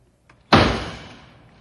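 A door is banged shut with a single loud slam, preceded by a faint click of the latch, then the impact rings out and decays over about a second.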